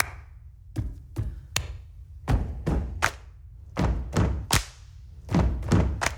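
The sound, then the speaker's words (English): A band and friends on a stage in a recording studio stomp their feet heavily on a floor in a steady rhythm, repeating groups of three loud thuds with short pauses between groups. No one speaks. “So he gets the whole band and a few of the friends up on the stage in the studio and gets them to start banging their feet to the rhythm.”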